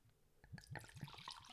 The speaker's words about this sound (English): So as you can see, I pour the whiskey in front of the microphone, so y'all can hear that delicious glug.